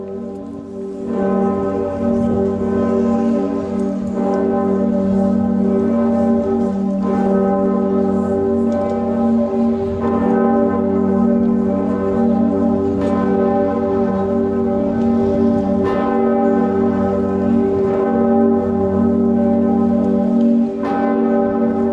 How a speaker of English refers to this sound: Pretiosa, also at Cologne Cathedral in Germany, cast in 1448 by the Heinrich Brodermann and Christian Kloyt Bell Foundry, with a pitch of G, a mass of 10,500 kilograms, and a diameter of 2.4 meters, Pretiosa was the largest bell in the Western world